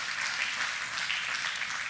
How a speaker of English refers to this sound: Can you just let them hear you in the congregation and tell them we love them? So can we just applaud them? We love you guys.